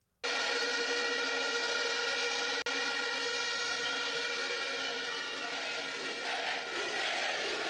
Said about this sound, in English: Crowds chanting Bukele.